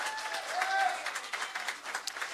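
A church audience at a morning service at Journey Church applauds for a tech booth worker's birthday, steady, dense overlapping claps filling the whole stretch at a moderate, even loudness, with a few faint whistles or cheers mixed in.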